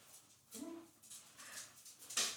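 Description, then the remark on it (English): A female dog named Pebbles gives a short, quiet whimper, a brief whiny cry, followed by faint shuffling and breathy noises in an otherwise quiet room. “Shout out my dog.”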